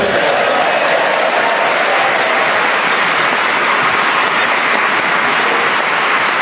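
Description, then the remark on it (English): A crowd applauds steadily, a dense, even wash of many hands clapping at once, loud and sustained for several seconds without letting up. “Please don't clap too long.”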